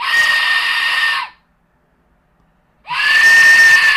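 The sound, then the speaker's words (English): An Aztec death whistle lets out two long, piercing, scream-like shrieks, harsh and breathy with a wavering high tone, separated by a gap of silence of over a second. “The Aztec death whistle.”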